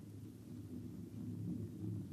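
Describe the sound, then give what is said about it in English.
A steady, low rumble rolls on without a break, dense and heavy like many hooves pounding, from a herd of critters stampeding this way, swelling slightly toward the end. No voices are heard. “A herd of critters. Look, you see the dust? They're coming this way in a stampede.”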